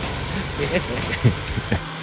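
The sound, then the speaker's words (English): A car engine runs steadily with a low, continuous rumble, with brief louder pulses roughly every half second over the idling drone. “Did you have that car in there, man?”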